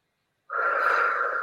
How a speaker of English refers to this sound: And just notice your breath. Notice how you're breathing. And just I'd like you to take 3 big deep breaths. Breathe in.